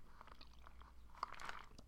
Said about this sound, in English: So I had to pick this up. It is so, you have to like cinnamon though. It is so fucking good. I'm obsessed with it. I'm going to take a sip now.